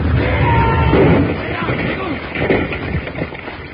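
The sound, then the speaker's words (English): A heavy explosion roars through, a dense, rumbling wash of noise that stays loud before easing slightly and churning on as debris-like crackle. A loose board at the mouth of Batwing Cave sets off a rifle that fires into a keg of blasting powder, and the blast rocks the mountainside. “Jingles stepped on a loose board at the mouth of Batwing Cave and set off a rifle, which fired into a keg of blasting powder, and the explosion rocked the mountainside.”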